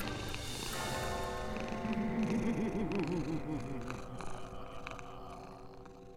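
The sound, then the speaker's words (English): A low, rumbling cat purr swells and wavers steadily for several seconds, layered over sustained droning tones, with no voices. “You hear a purr in the inside of your head.”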